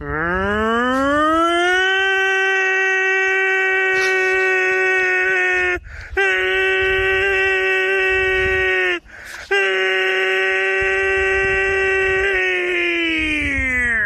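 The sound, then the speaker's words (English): A voice imitates a tornado warning siren: a loud, steady wailing tone that rises at the start, briefly breaks twice for breath, and holds for about fourteen seconds before tapering off. “Okay, guys, I'm going to do a tornado siren once again.”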